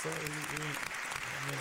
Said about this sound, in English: Sign up. Round of applause? You want to get yeah, of course, man.